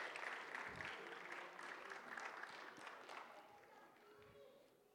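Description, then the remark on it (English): A steady round of applause from a crowd for children as they come towards the front, dense overlapping claps holding fairly loud for several seconds and easing slightly toward the end, with faint voices mixed underneath. “But let's give our kids a round of applause as they come towards the front.”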